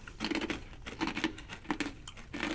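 Crisp, irregular crunching of a tuna cracker chip, made without potato or corn and flavoured with sambal, being chewed, with repeated brittle bursts in a steady chomping rhythm and no talking.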